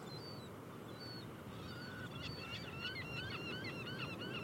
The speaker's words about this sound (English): I hope this is coming through. There's some crazy seagull action going on. I think it's a young'un.